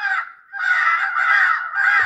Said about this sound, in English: And so that's why I'll switch over to something like a crow sound, you know, at the end, because they're so linked, crows, ravens, or magpies, depending on, you know, the area that you're in. And so I might do something like with a crow fight.